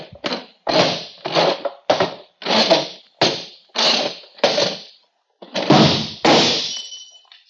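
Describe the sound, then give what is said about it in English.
A chair is squirmed across the floor by the person sitting in it, in a series of short, rough drags, then a drinking glass knocked off a table hits the floor and breaks with a bright, ringing shatter. No voices. “I'll squirm my chair over there and knock the glass on the floor to break it.”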